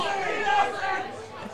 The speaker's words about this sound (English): Crowd's pretty happy with the take from Mark Minter, former Camden player then. I think they're screaming for a penalty.